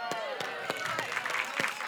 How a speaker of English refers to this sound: Why were you so slow on the clapping? You've got to back me up with the children.